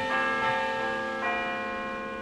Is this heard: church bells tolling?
yes